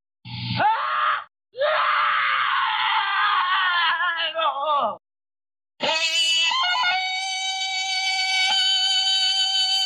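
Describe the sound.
A man beats his chest and lets out a loud Tarzan yell in warbling bursts, a short cry then a long wavering howl, followed after a brief pause by a sustained, ringing high-pitched call.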